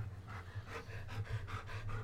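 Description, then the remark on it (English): An old dog pants rapidly and steadily near the microphone, quick rhythmic breaths repeating over a low background hum, with no voices. “Don't breathe too loudly in the mic, Sam. He's old doggy.”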